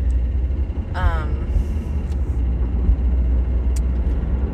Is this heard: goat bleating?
no